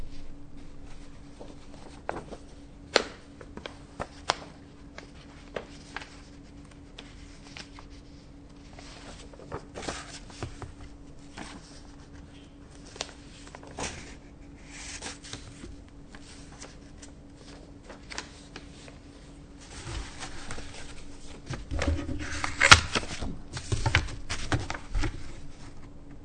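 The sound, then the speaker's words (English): Papers being shuffled and handled, with scattered soft rustles and taps, building into a busier, louder flurry of rustling toward the end. A steady low hum runs underneath. “My imitation of Roshi now, shuffling my papers.”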